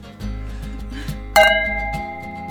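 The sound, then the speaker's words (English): A single bright clink of glasses touching in a toast, its ringing tone lingering for about half a second over a steady low background hum. “Cheers to all the above.”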